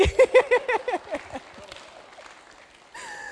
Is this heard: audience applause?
yes